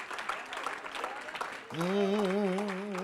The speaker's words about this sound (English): Now clap your hand to the Lord in Jesus' name.